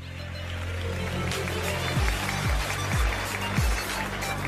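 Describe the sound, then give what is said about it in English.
A crowd at a news conference in Chiang Rai, Thailand cheers and claps as the 12 boys of the Wild Boar football team, rescued from a flooded cave, enter the room, in a dense, steady wash of noise, with four deep thumps landing roughly every half second partway through. “Joyous cheers and clapping as the boys entered the room.”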